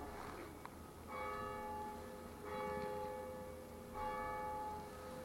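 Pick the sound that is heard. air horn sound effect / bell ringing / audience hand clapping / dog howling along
bell ringing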